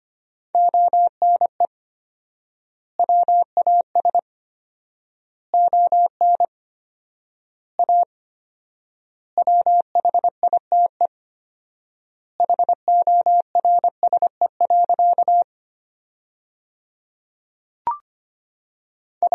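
Fast Morse code practice tones at 25 words per minute with 4x word spacing, sending sentences built from the top 300 words: a steady mid-pitched beep keyed into quick dots and dashes, grouped into bursts with long silent gaps between words. No voices.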